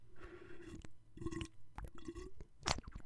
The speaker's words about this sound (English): Well, get that water bottle ASMR in there. Yeah, one of these.